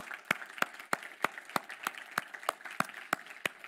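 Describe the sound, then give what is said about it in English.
A crowd applauds for the volunteers of a ministry, with a steady, even beat of sharp claps standing out over a softer wash of scattered clapping. The sound is moderately quiet and no one speaks. “So can we just take a minute and just give a round of applause for all of our volunteers?”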